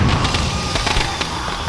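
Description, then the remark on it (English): Firecrackers burst at a festival near a pagoda roof in a dense, crackling barrage, sharp pops stacked over a constant hiss, with a few louder snaps standing out. Loud, with no voices. “Firecrackers send one of my predators spinning over a pagoda roof.”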